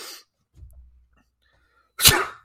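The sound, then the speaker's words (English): A person fakes a single loud, sharp sneeze to show how they usually sneeze, preceded by a soft, low intake of breath. It ends with a brief breathy tail and no talking. “how do you sneeze when you're going to sneeze just on a regular Tuesday? How are you sneezing?”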